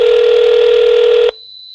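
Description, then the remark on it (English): A loud, steady electronic telephone tone sounds as a call is placed, holding for just over a second, then cuts off abruptly, leaving only a faint, thin high-pitched whine. “And let's try to give him a call here.”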